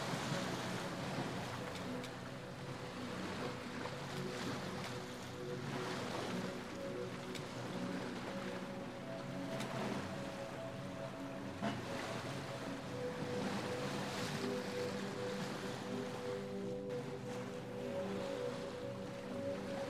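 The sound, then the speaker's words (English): A boat engine hums steadily as the boat moves slowly along a jagged, rocky coastline under a cloudless sky, ocean water washing and splashing around the hull, a continuous, fairly loud wash of waves and some wind with no voices. “The boat moves slowly along a jagged coastline, scattered with rocky inlets.”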